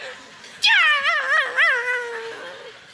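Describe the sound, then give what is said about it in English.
A voice imitates a yelping chihuahua: a sudden high yip that bends into a wavering, whiny howl lasting a couple of seconds, loud, then trailing off. “The chihuahua, they drop kick and punt the pup.”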